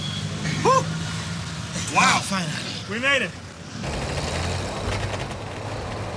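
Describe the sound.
Steady rumble and wind-like road noise from a shared passenger truck, used as public transportation in Haiti and fitting about a dozen people, moving through traffic, with a few brief bursts of people talking over it.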